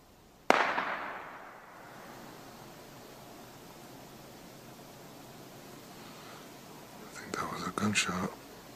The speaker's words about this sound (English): Somebody just shot over into the woods.